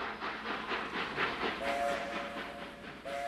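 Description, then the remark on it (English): A massive circus train arrives into the Canadian Pacific Railway yards in Calgary on August 3rd, 1926, rumbling with a rhythmic clatter of wheels, while a high steady whistle sounds twice, once midway and again briefly near the end, loud. “on August 3rd, 1926, the massive circus train screamed into the Canadian Pacific Railway yards near what is now the Calgary Stampede Grounds.”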